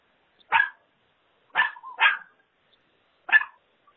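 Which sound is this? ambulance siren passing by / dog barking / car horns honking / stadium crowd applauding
dog barking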